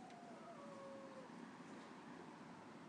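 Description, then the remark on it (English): A dog howls faintly outside, one drawn-out, slightly falling note lasting about a second, set against a steady hiss of outdoor background noise with no one speaking. “Dog, sounds like a dog.”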